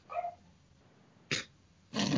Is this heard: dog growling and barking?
yes